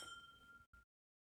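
Glasses of Glenfiddich 12-year-old single malt whisky clink together in a toast, a bright ringing chime that sustains briefly, followed by a second quick, shorter clink before falling silent. Fairly clear, with no talking.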